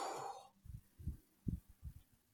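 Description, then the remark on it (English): A quick, shallow chest breath, a demonstration of stress breathing, pushed out in a short airy burst, followed by a few soft, low thumps in near silence. No one speaks. “So that's actually stress breathing, because it's all up in our chest.”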